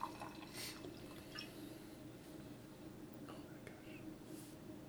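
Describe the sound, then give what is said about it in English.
A thick, dark, syrupy drink pours steadily into a glass, a soft continuous trickle with a few faint drips and clinks, heard quietly alongside low murmured voices. “Oh, I think I poured you too much.”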